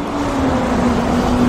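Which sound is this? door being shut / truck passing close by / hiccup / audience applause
truck passing close by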